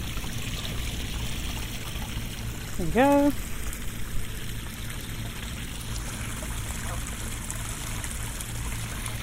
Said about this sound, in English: So I'm looking into this big open pipe that's pouring water out towards the Thames, and I was so expecting there to be rats in there.